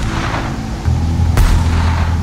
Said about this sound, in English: Bill fired off distress flares through the night to no avail.